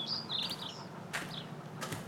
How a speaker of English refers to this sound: Ron opens a prop door with a rusty hinge, and it makes a loud squeak.